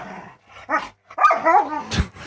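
Dogs bark, growl and yelp in a short, chaotic scuffle, with overlapping snarls building to a loud burst near the end.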